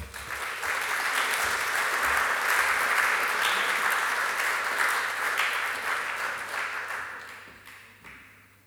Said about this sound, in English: And so on that note, please join me and give a huge round of applause for our chair for tonight's lecture, Laurie Taylor.